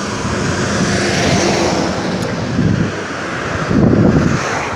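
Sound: street traffic passing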